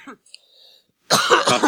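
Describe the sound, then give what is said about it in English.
A short throaty sound, a brief near-silent pause, then a loud, harsh fit of coughing, several rough bursts run together with no talking. “Welcome to the cough commercial.”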